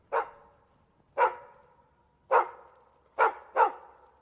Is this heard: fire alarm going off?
no